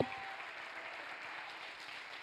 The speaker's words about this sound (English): How many believes what I'm preaching? Clap your hands all over this.